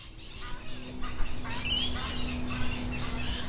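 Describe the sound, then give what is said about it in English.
Rough, repeated honking squawks from an Australian white ibis, fairly faint, mixed with other birds chirping over a steady low hum. “That's Threscionis maluca, more commonly the Australian white ibis. The bin chicken.”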